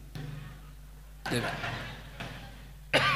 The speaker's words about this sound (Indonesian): Maaf. Seperti batuk gini.